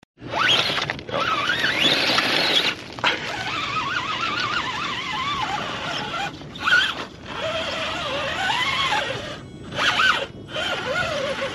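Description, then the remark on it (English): A remote control car drives around, its small electric motor whining and buzzing as the pitch rises and falls with speed. It cuts out briefly a few times before revving again. “I think somebody has a remote control car up here distracting me from my teaching.”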